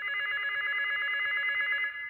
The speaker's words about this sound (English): The phone was ringing. I was so groggy, but I grabbed the receiver, and I heard the voice.